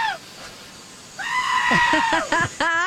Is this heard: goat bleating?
yes